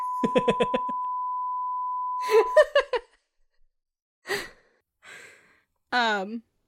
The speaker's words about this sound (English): another bleep.